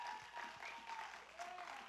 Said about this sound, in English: And so I wanted to just celebrate all of the amazing fathers who chose to start their day in the Father's house. Can we give a big round of applause to all of the amazing dads?